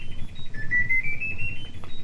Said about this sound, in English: That's my washing machine, it sings.